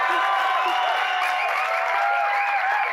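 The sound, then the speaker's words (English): A church audience cheers and claps for their pastors in a steady, loud wash of noise for a few seconds, with scattered high-pitched whoops and shouts rising above the crowd. “So, like, why don't you guys cheer for our pastors while you take a drink?”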